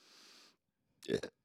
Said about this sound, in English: We'll do B since I burped in the microphone.